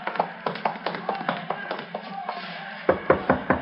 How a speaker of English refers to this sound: Yeah, around back of the stand here. Knock on the door.